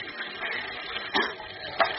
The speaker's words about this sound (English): A stiff breeze lashes the sea into angry white-capped waves that pound at the shipwrecked trio as if trying to tear them loose from the upturned hull. Listen.